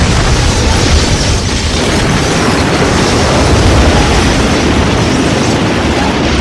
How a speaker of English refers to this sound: A volley of missiles comes screaming out of the sky. They slam into the Master of Sorrow and his forces, unleashing explosive fury.